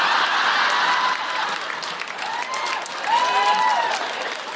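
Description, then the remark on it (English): A crowd applauds steadily throughout, the dense clapping overlaid with cheers and a few rising whoops that swell toward the end, with no one speaking over it. “And now are you cheering?”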